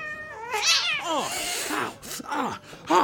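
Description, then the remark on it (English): An angry cat yowls and growls in a series of drawn-out, wavering caterwauls, rising and falling in pitch, with a sharp hiss-like burst at the end. “Even the cats are mean here.”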